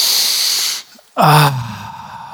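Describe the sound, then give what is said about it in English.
A deep breath: a long, airy hissing inhale, a brief pause, then a loud exhale that starts with a low, falling voiced sigh and trails off into soft breathy air. “And I think it would be appropriate if we just take a couple of deep breaths.”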